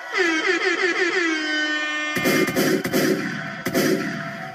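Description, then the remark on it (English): Loud air horn blasts, opening with a long wavering, pulsing tone, then breaking into a harsher, noisier stretch punctuated by sharp bangs, with no talking. “Wow, air horns.”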